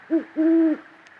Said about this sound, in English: There we go. That's the largest owl that lives in this greater Yellowstone ecosystem, the great horned owl. And the most intriguing thing about them to me isn't that they're the biggest owl around here.